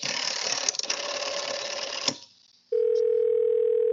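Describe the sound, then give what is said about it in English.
A burst of rattling, mechanical noise gives way to a brief near-silence, then a steady, loud telephone dial tone hums continuously on the line as a call to the operator is placed. “I'll call the operator again.”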